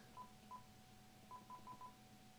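Six short beeping telephone keypad tones, two spaced apart and then four in quick succession, heard clearly over a faint low hum with no one speaking, as a phone number is dialed to call Dr. Nick Delgado back.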